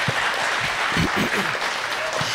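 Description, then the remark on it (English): A church audience applauds for Jesus during a morning service in a dense, steady wash of clapping, loud and sustained throughout, with faint voices and cheers mixed underneath. “Give Jesus one more big round of applause.”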